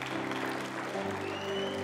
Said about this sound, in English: Can we give the Lord a cheer today?